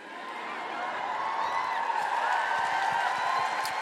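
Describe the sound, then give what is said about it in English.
A live audience at the Royal Albert Hall cheers at the mention of Greta Thunberg in a steady, sustained roar, with scattered whoops and shouts rising above the dense crowd noise and holding at a loud level throughout. “Yeah, you can cheer Greta Thunberg.”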